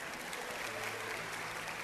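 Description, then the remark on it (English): A crowd, asked to clap a medium clap, claps steadily at a moderate level, a dense patter of many hands blending into an even, continuous wash of applause with no voices standing out. “Okay, I want you to clap a medium clap.”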